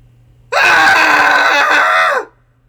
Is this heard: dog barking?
no